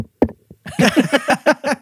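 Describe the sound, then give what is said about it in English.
A single thump, a brief pause, then a quick run of six or seven loud knocks on a microphone, each a hollow, resonant bump in a steady rhythm. “But this time, so like I knock, so I'm like, oops, this is gonna be the knock over the your microphone.”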